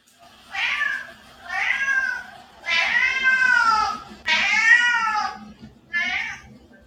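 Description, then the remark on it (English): A cat named Adonis meows loudly five times in a row, each call long and wailing with short pauses between, the last one shorter. “I told you that cat is crazy.”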